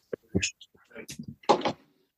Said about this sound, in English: That was a nice that chair's got some good bearings in it. That was free flowing.